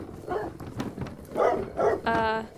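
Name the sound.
guard dogs barking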